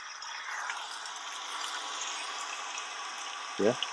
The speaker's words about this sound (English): Okay, so that's rain, and then you can have like rain on an umbrella. So it's pretty cool.